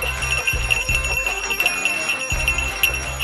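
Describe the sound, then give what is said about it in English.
A reindeer bell jingles continuously before Christmas, its bright ringing tones shimmering steadily for a few seconds over a low, uneven rumble, with no talking. “It's my reindeer bell, because it's my last show before Christmas.”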